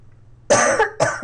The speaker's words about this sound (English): Can you hold on a sec? I got a cough really bad. Oh. I don't know, something just went in my throat.